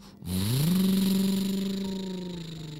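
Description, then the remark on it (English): A truck engine starts up and revs, its pitch climbing quickly then holding as it pulls away, loud with a steady rumble that slowly eases off. “They were able to drive the truck back safely to Frankie's house.”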